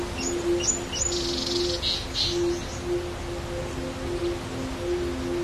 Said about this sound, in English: Imagine for a moment that you're in the wilds of Southern Africa. You'd expect to hear birds, maybe the sound of a steady flowing river, and a breeze rustling the leaves of a bush willow growing along its banks.